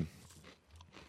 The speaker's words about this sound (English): Eating. You couldn't wait till you got the milk.